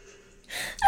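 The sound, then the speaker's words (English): A single sharp, breathy gasp of heavy breathing, fairly loud, rising abruptly out of near-silence and then trailing off into a second short breath. “It says breathing heavily.”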